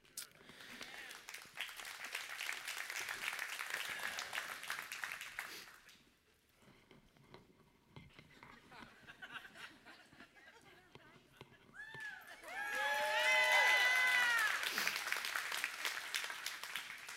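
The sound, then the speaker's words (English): An audience breaks into sustained applause directed toward the Lord, dies down to a murmur, then claps again, louder, with whoops and cheering voices rising over the dense crackle of hands. “It's better for me to do that when the clapping is not towards me.”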